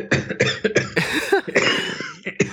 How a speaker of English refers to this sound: sorry, wow, we're both, like, coughing all weird today.